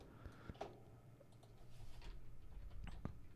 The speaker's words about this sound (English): Is that a thing? Let's look. Don't type in Alpha Dick. No, I'm typing in Alpha Dick.